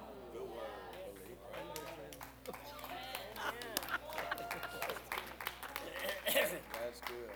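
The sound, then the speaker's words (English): A church audience claps during a sermon in a steady, uneven patter of sharp hand claps that swells toward the end, with voices talking and calling out over the applause. “Some of you ain't clapping.”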